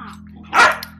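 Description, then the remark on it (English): A single loud, sharp dog bark rings out over a steady low background hum, with some fainter yelping sounds just before it. “Well, my dog just hates me sitting in my chair for some reason.”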